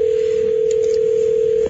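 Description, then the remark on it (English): A telephone call being placed to a person who sent a text, to confirm their story: a single steady electronic line tone holds at even loudness for under two seconds, then cuts off. No one speaks. “every once in a while you get a text, and you're like, we have to phone this person and confirm if this really happened.”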